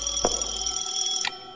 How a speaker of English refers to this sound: Wait. Wait. There's someone on the phone. Get that phone,